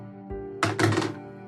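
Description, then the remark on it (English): Dice are rolled in a dice box for a perception check in a tabletop game. They tumble in two quick clattering bursts, a sharp rattle followed by a slightly longer one, over a low steady hum with no talking. “It's this dice box.”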